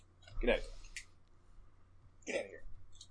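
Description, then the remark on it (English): A cat rips paper close to the microphone in two short, crackly tearing bursts separated by a pause of almost two seconds, over a faint low hum. “He wants to rip paper next to the microphone on the podcast.”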